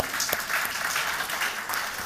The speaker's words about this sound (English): So would you give yourself a round of applause just for partnering in that?